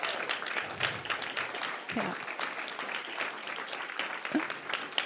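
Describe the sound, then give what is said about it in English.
A crowd applauds steadily, dense overlapping claps at a sustained, moderate level, with a few faint voices or calls mixed in. “And so can we just give them a round of applause?”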